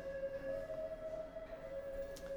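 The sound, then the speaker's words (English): A siren passing by holds a steady, droning wail for a couple of seconds, fairly faint and without speech, under a low background hum. “Let the siren go by.”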